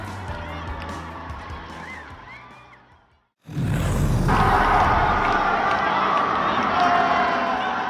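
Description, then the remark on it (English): Steady street ambience in Times Square, New York, cuts out briefly, then a sudden loud boom from an exploding manhole cover erupts into continuous crowd commotion, many voices shouting and screaming as people rush away, staying loud to the end. “A loud boom, sending New Yorkers scrambling in Times Square last night. The culprit was an exploding manhole cover near the busy tourist intersection.”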